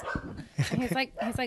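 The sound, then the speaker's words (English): A male dog sitting up on a table vocalizes in a quick run of whiny yips and whimpers, several short, pitched bursts over a second or so, with a human voice murmuring in the background. “He's also a very floppy dog.”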